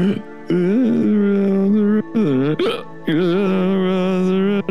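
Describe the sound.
A man's voice hums a wavering, tipsy tune, imitating a drunken person singing something like a sea shanty in a low voice, in long sustained phrases, broken midway by a sharp imitated hiccup, with a gulping catch before the melody resumes.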